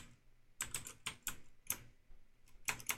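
Clacky mechanical keyboard typing, a quick irregular run of sharp key strikes with brief pauses between bursts, with no talking.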